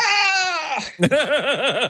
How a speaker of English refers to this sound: And a titan in the sound world, Ben Burtt, put together a collection of all of the movies this sound effect has been used in. And it's basically the sound of a man yelling, a man falling and yelling.